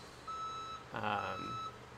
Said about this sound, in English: Yeah, and it's not a truck. It's, like... I could try to point it out the window. It's like a bulldozer-style thing.